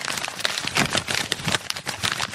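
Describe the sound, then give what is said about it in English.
Busy rustling and crinkling of a big pile of paper being shuffled and pushed around, a continuous run of irregular crackly bursts with no voices. “That's just a big pile of paper.”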